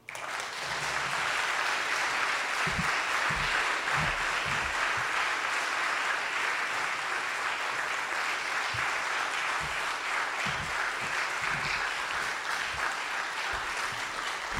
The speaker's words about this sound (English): Let's give one more round of applause for all of our storytellers. Stand up if you told your story tonight.